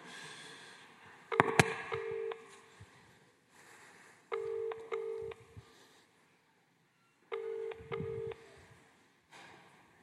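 An outgoing call's ringing tone sounds through a phone line to a Northern Ireland housing office, three buzzy ring bursts spaced a few seconds apart over faint background hiss, with no one talking.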